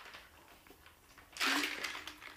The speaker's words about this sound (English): I'm taking another sip.